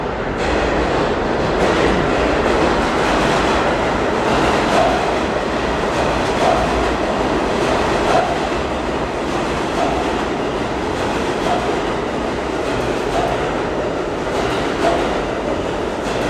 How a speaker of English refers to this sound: and here's a train.